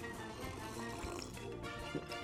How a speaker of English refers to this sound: So that is the latest news coming out of Disney turns as I take a sip of bourbon, because wow.